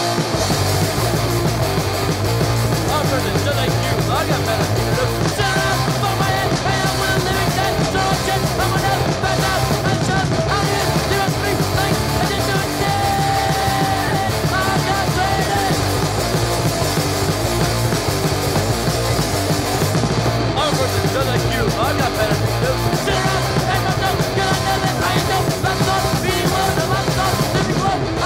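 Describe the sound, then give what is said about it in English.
A loud, dense hardcore punk song with distorted guitars and driving drums, topped by shouted vocals that stay on key rather than just barking, playing continuously throughout. “Pointed out how melodic …'s yelling is, which I totally understand, that he's not just like barking, like it's on key.”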